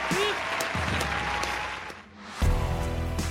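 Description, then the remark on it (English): A round of applause: dense, steady clapping from a group fills the whole stretch, dipping briefly before swelling louder again near the end. Low murmuring voices sit under the clapping. “Do a round of applause.”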